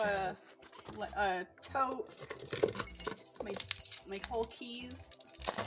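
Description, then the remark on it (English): Keys jangle and clink in bursts inside a tote bag, moderately loud, mixed with rustling while a person talks over them. “I have a tote, my whole keys.”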